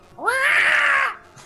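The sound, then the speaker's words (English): A voice imitates a cat's hiss: one breathy, strained cry of about a second that rises in pitch and holds, with a harsh, noisy edge, and no other talking. “And like, you just see me, like, I'm just really determined right now, and I'm like coming out hissing.”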